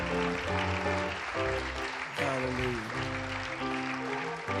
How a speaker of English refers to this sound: Yeah, just give the Lord a hand clap of praise.